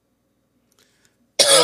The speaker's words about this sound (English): That cough right there.